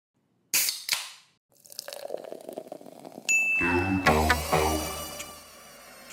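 A loud, harsh game-show buzzer sounds for over two seconds as a contestant buzzes in to answer a Groundhog Day quiz question, after a couple of sharp pops and some clattering noise, the buzzer's low rasping tone holding steady until the end. No one speaks.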